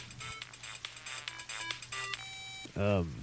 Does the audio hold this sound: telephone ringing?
yes